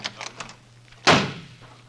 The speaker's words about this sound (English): That door slam wasn't Robert. It was Tony Curtis leaving the studio.